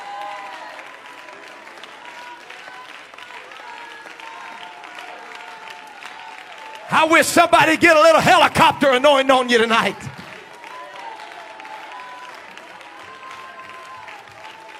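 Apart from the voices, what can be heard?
audience clapping hands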